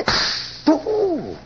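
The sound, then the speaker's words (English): A woman slaps a guest in her own house: a sharp, loud smack, followed by a second crisp hit that gives way to a brief, falling vocal cry or gasp. “slaps a guest in her own house.”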